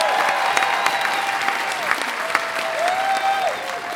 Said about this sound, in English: Please give your loudest applause for the one, the only, Susie Dent.